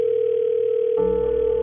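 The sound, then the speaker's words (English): A phone chimes with an incoming call: a steady, clear electronic tone that holds throughout, with a richer layered tone joining about halfway through. Fairly loud, with no voices. “And that's when my phone chimes.”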